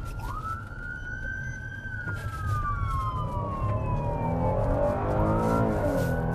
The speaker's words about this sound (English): Racing to the scene with lights and sirens in this city of 525,000, its population far bigger than Kansas City, Pittsburgh, or Cleveland.